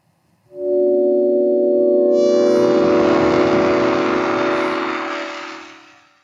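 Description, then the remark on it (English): Synthetic tones converted from the decomposition odors of a pig by the Labrador, a device invented by Dr. Vaz: a steady, droning chord of layered pitches swells in, gains a hissing, buzzy wash partway through, then slowly fades out. No one speaks. “And now a pig.”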